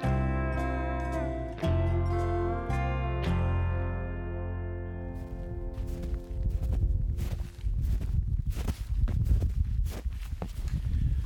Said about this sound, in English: The crunch is the sound of us walking through snow. It is the first day of October 2002. We're in, occasionally in about 4 inches of snow, at other times none at all.